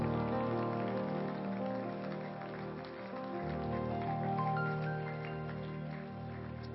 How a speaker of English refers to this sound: And everyone claps their hands unto the Lord.